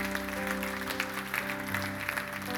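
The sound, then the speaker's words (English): Audience applause, a dense, steady patter of many hands clapping for the full couple of seconds, with a constant low tonal hum sitting underneath the clatter. “Let's put our hands together for Robin.”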